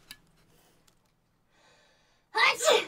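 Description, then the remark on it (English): Someone fakes a sneeze on command: near-silence with a faint breath, then a loud, sharp two-part burst, a quick intake and a forceful "choo" that ends abruptly. “can you sneeze on command?”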